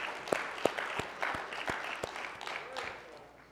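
A church audience applauds together, giving the Lord a hand clap of praise, a dense wash of many hands clapping with a few sharper individual claps standing out at a steady rhythm, fading slightly toward the end.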